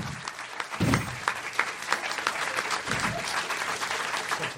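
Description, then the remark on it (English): A live audience breaks into steady applause, many hands clapping in a dense, crackling wash that holds for several seconds, with a few low murmurs and whoops mixed in. “ladies and gentlemen, give him a nice round of applause.”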